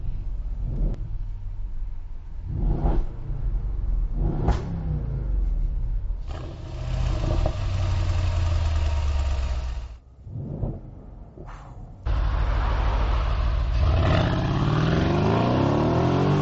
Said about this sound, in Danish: Og det lækre ved en Mercedes AMG, det er jo lyden. Og lyden i den her bil er endnu bedre, fordi at det er den gamle 5,5 liters V8. I kan næsten høre.